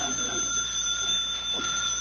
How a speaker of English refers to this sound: Will you please answer the phone? I'm trying to. I just can't find it.